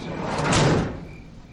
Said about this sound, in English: Elk slid the van door closed and sat next to Macy on the seat in front of me.